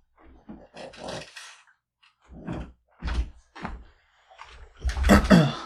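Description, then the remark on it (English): A door being closed: a series of thumps, rattles and scraping knocks spread over several seconds, finishing with a louder, fuller bang as it shuts. “Let me close the door.”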